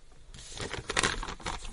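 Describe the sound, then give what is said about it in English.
A cough sweet wrapper crinkles and rustles in a quick run of crackly bursts, dense and bright, lasting under two seconds with no talking. “I have got a cough sweet, sorry.”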